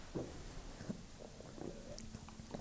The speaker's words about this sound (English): What did you just do there? I took a sip of beer like a gentleman.